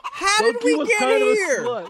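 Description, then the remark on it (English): A loud chicken sound effect played from a sound button: a continuous run of nasal clucks and squawks with wavering, sliding pitch, lasting about two seconds and heard on its own without talk. “I need to just keep playing the chicken button over here.”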